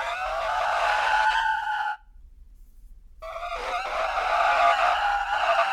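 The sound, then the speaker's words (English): Two loud, sustained screeches of car brakes and skidding tires as the driver pumps the brakes, each lasting a couple of seconds with a brief pause between them, and no voices. “Whoa, cuz he pumped the brakes.”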